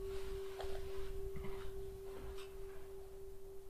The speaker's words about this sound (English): It's wonderful to hear the sound of the bell.